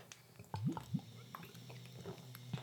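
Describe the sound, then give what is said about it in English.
Chocolatey Wisconsin Brewing porter beer flowing as it's poured: soft, wet gurgling with a few quick rising glugs, quiet and steady, with no one talking. “I wonder if it picked up the sounds of the... Chocolatey. Beer. Flowing through.”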